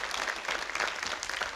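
An audience breaks into steady applause, dense overlapping claps holding an even, fairly loud level throughout with no pauses or voices standing out.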